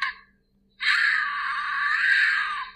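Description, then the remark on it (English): A mountain lion screams: a brief cry, a short pause, then a long, loud, raspy shriek held steady for about two seconds, high-pitched and wailing, with no voices. “Mountain lion, baby. This is what they sound like.”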